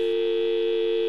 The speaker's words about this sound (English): The dial tone, dear listeners, was a sound you heard when you picked up a landline telephone before you dialed in any